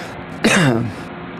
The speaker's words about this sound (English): Note to self, don't cough in your microphone.